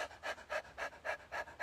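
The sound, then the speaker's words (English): Rapid, rhythmic panting with the tongue out, a person doing the breath of fire breathing exercise, about seven quick breathy huffs at an even, fast pace, clear with no talking. “So if you've never done breath of fire before, just stick your tongue out and pant like a puppy.”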